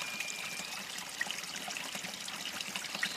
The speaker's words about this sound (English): We walk down to the creek by the big boulders at the edge of it, and we get to the water. Small, trickling pool with cool water.